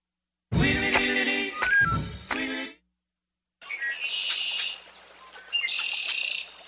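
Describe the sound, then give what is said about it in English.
A sparrow-sized rail, the smallest of the family that includes coots and gallinules, calls in a quiet marsh: a harsh, buzzy burst of several notes, a pause, then high, thin repeated notes over faint background noise. “The smallest member of a family that includes coots and gallinules and moorhens”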